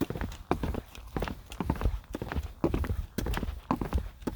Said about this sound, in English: I'm on the boardwalk. You hear me clanking along.